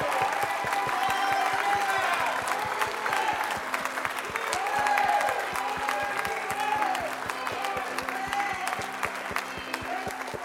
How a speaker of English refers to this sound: Clap of praise.